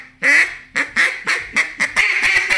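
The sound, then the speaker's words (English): A Small Talk duck call blows a rapid power chatter of about seven loud, raspy mallard-style quacks, the first long and the rest quicker and clipped, run together in a bright chatter. “Ooh-wee. That's mallard duck right there, baby.”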